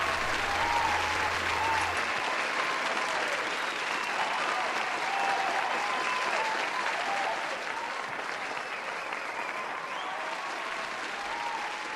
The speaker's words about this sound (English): Cue the applause.